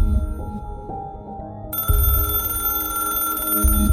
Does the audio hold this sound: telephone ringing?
yes